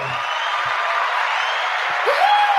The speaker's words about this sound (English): Jody, hit that wee cheer button. Hit that wee cheer button that goes nuts.